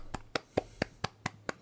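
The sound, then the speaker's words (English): Seven crisp hand claps in a quick, steady rhythm, each a sharp bright smack over a faint low hum, with no talking, clapping for the audience at the end of a live show. “Clapping for our audience.”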